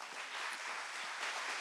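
Steady audience applause fills the moment, a dense wash of many hands clapping at even loudness throughout, with no voices standing out.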